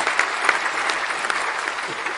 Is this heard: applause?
yes